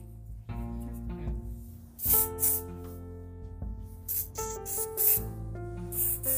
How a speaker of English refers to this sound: Well, anyway, let me spray that.